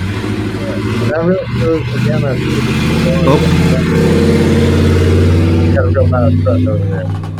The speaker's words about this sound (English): You know what? I'm sorry. There was just a truck going by. Yeah, no problem. I was saying you got a real loud truck there.